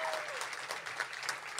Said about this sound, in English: Clap if you've heard the Bechdel cast before. Okay.